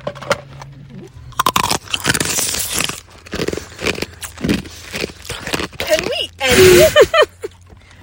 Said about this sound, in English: Do you want to hear some crunching?